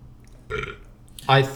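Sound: burp into the microphone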